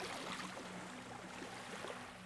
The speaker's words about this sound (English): and gently start rowing away from the beach.